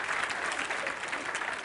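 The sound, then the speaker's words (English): An audience claps their hands in dense, steady applause, a sustained wash of many overlapping claps with no distinct rhythm, holding an even loudness throughout. “Somebody clap your hands like, I ain't have no drama.”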